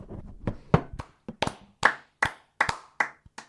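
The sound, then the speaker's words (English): A sound effect of sparse, uneven hand clapping, about a dozen sharp claps over a few seconds, like a small scattered round of applause, clear with no voices. “Because there is nothing to applaud in Australian rugby union.”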